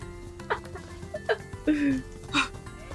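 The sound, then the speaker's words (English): A grazing sheep about 100 to 200 feet away bleats once, a short wavering cry standing out over a steady outdoor background, with a few scattered clicks and bumps around it. “You heard it. We heard the sheep.”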